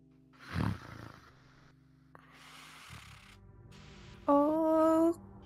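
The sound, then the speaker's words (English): A creature moving in the room growls: a short low rumble early on, then a loud, sustained, raspy growl with a strong tonal whine near the end, lasting about a second. No one speaks. “And you can almost hear a growl.”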